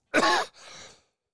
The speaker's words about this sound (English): Man, I tickled myself so much there, I got into a coughing fit.